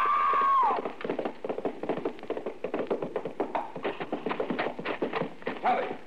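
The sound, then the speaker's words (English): A short high-pitched cry opens, then a racing horse's hooves clatter rapidly and unevenly near a corral gate, the galloping beats bunching into a scrambling, stumbling jumble as the horse stumbles over a lower bar and throws its rider, before fading. “The horse stumbled over that lower bar and threw her.”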